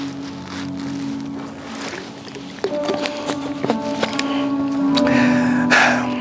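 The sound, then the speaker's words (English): Someone drinks water: small sloshing sips and soft gulps with scattered clicks, ending in a brief exhaled breath, over a steady low hum. “Let me drink some water.”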